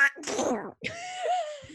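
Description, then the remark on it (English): A voice imitates Donald Duck sneezing: a rising, raspy buildup followed by a sharp burst and a quacking, nasal squawk that trails off, all in under two seconds. “Do Donald Duck sneezing.”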